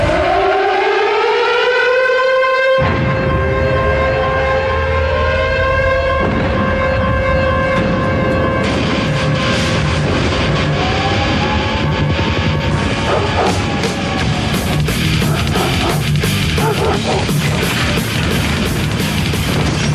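A loud wailing siren rises and holds for several seconds, then heavy thrash metal music with crashing, pounding hits kicks in beneath it and takes over, with no talking; the theme song of the WWF Raw television show.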